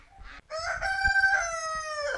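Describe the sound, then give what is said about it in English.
A rooster crows loudly by the front door of a home in County Wexford, one long drawn-out cock-a-doodle-doo with a strained, harmonic-rich tone, preceded by a brief clucking note and no talking. “Just coming up to the front door, and there's a rooster and there's geese, and it's all very festive here.”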